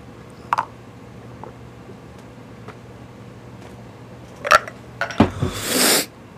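A few scattered knocks and clinks, then a shot glass plunges into beer for an Irish car bomb drink with a short splash, followed by a burst of hurried gulping. Nobody speaks.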